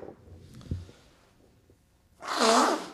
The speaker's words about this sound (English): I'm blowing my nose, but it's not because I'm doing cocaine for once.